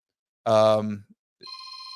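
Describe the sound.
A telephone starts ringing with a steady, bright electronic tone that continues to the end, just after a short burst of a man's voice. The ring is clear.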